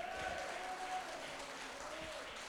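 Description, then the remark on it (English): An audience claps for the Lord in a dense, steady wash of many hands that holds evenly throughout, with a faint voice-like tone drifting underneath. “Come on, let's give a clap to the Lord.”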